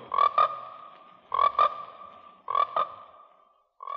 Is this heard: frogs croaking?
yes